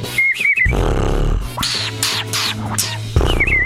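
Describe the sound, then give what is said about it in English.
A voice mimics a pet budgie named Vivian with high warbling whistles, then a run of harsh, rasping screech-like bursts, and closes with another short chirpy whistle. It is all fairly loud, with no words spoken. “So I'd just do that, make that little screeching noise.”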